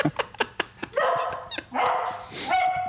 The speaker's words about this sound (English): Still barking. Hold on.